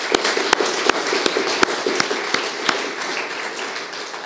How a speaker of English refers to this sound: That's wonderful. Can we give her another applause?